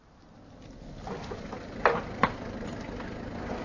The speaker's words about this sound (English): What is it? A car's just driven up. It's Giraud with Jacques Renault and two gendarmes.